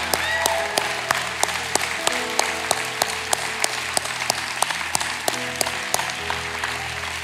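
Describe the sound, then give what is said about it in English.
An audience applauds steadily for several seconds, cheering on people as they go to connect, a dense wash of clapping dotted with sharper individual claps, while soft sustained musical tones hold underneath. “So if you'll go, we'll cheer you on just for a few moments.”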